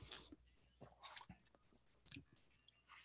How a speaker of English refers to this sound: What are you eating right there? What are we munching on? My sister made it. All right, yeah. It's I know it's hamburger helper. Mm-hmm. Well, not hamburger helper, but hamburger with the egg noodles. Okay. With gravy.